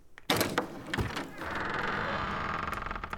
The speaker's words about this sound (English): open the door.